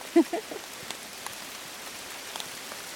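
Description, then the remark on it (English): Hail patters steadily against a surface, a fine hissing rush scattered with sharp little ticks, with a brief louder knock near the start and no voices. “Anyway, yes, the machine, we have hail.”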